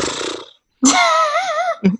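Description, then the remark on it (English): A breathy rush of air, a brief pause, then a buzzy, wobbling exhale as someone blows out with fluttering cheeks, ending in a short puff. “For a little razzle dazzle, when you blow out, your cheeks flutter.”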